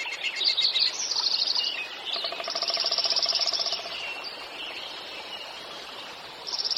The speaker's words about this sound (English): One of the magical gifts of spring is to hear the dawn song. As early morning light extinguishes the stars, as the first rays of sunlight fill the trees, male birds begin to pour out their songs. Warblers, sparrows, chickadees, thrushes, finches